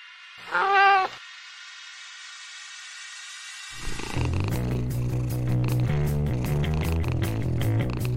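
cat yowling

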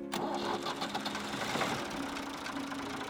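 tractor engine running

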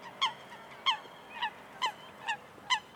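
ducks quacking and honking

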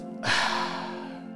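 sniff

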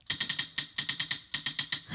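spinning prize wheel clicking

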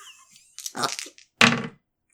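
dice being rolled

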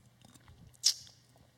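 sipping tea

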